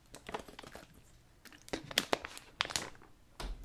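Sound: drinking water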